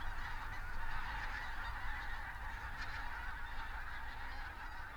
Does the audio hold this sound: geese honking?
yes